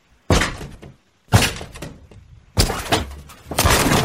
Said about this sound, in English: Let me check this door real quick.